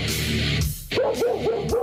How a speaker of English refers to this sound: Barking.